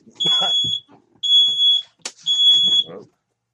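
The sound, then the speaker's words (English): A smoke detector alarm sounds three loud, piercing beeps, each about half a second long and evenly spaced, with muffled voices and some rustling underneath. “If it ain't a phone, it's a goddamn smoke detector.”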